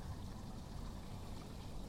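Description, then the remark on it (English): Water from a backyard fountain trickles and splashes steadily onto fading grass in a soft, continuous wash, fairly quiet, with no voices. “Noticing the water that's flowing outside of the fountain onto the grass that's starting to fade, starting to change.”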